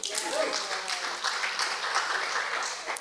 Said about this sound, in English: Applause for that?